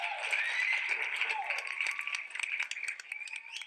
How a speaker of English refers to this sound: We've made it. Let's hit a round of applause for these guys. Yeah, man.